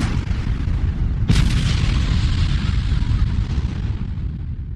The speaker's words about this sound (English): Cue explosions.